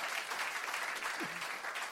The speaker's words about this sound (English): It's good to see the old good doctor in the building. Amen. A round of applause for Dr. Batsy.